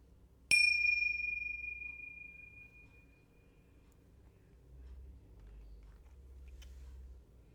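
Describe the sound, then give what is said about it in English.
A single meditation bell is struck once at the start of a meditation session, a clear bright ding with shimmering overtones that rings out and slowly fades over several seconds, followed by quiet low background hum. “I'll start today's meditation with a single bell and I'll end it with a double bell.”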